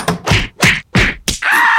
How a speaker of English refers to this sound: Sounds of me kicking video game news out the door.